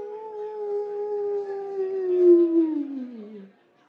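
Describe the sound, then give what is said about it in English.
A human voice imitates a coyote howl: one long, sustained wavering cry that swells, then slides downward in pitch and fades out, heard alone. “And so all of the great-grandchildren coyotes from that first coyote, when the night sky turns dark, they cry, whoo!”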